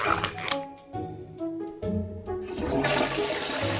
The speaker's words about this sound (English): one I got for you is called the Flush Wow, the smart contactless flushing device. Upgrade your toilet today. Let AI take over and save you time, water, and money. Check this out. Come on. Look how much fuss. He's trying to flush without touching it.